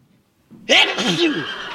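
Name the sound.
sneeze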